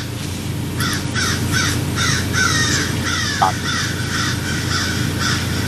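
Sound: crows cawing loudly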